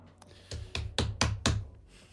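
A hand slaps a desk five times in a quick, even rhythm, each smack sharp and loud with a brief thud, during a fast quiz round of naming hotels, with no talking around it.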